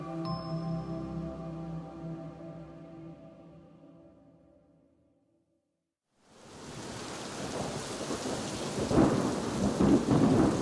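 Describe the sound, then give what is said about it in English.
After a fading tonal sound and a moment of silence, an evening thunderstorm with lightning bursts in: steady, loud rain hissing, with deep rolling thunder rumbling underneath and swelling toward the end. “One minute it was calm, the next lightning lit up the night sky, and thunder shook the ground.”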